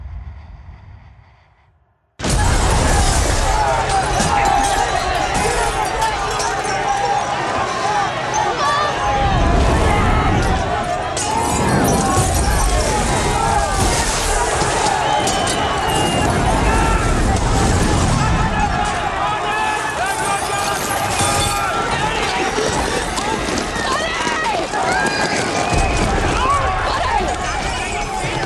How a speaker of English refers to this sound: Are those bees I'm hearing? They're not. What are they? What is that fuzzy thing at the bottom of the road? Those aren't bees. Oh no, those are people. Oh no, this is a riot.